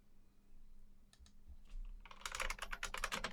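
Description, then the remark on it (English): Rapid typing on an old computer keyboard from 1993, a few scattered key presses at first, then a dense burst of loud, clacky keystrokes. No one speaks. “Hear my beautiful blacky keyboard?”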